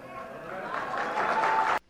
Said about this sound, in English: Yeah, and he got some applause for that. That was at his church yesterday.